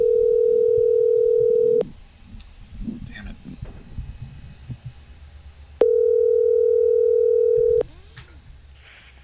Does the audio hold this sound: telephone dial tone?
yes